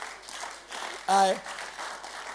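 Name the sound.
audience hand clapping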